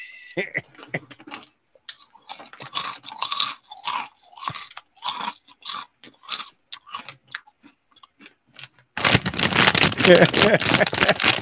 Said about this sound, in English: Just … chomping. Give us another good chomp. Get the biggest fucking Cheeto left in the bag.